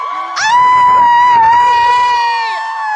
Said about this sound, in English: What? I'm like, why are people screaming?